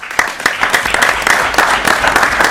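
A city council applauds, steady overlapping claps forming a continuous crackling wash at moderate loudness with no voices on top.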